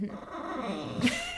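A dog growls low and steadily, then breaks into a higher, strained whine near the end; one continuous vocalization lasting just over a second.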